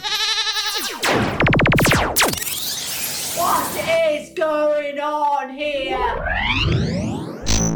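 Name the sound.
goat bleating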